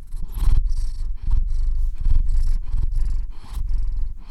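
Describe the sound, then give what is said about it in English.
A pet cat named Old Hickory, also called Lucy Brown, purrs loudly, a steady low rumble that swells and eases in a regular rhythm with each breath, with no voices over it. “This is the cat that'll play catch.”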